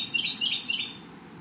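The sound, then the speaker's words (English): A shrill bird call repeats three times in quick succession, bright high-pitched chirps that sweep downward, fairly clear over a faint outdoor hum, then trails off into quiet. “Although that bird is pretty shrill sounding.”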